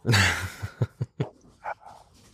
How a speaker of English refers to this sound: As I hear the dogs running around the house.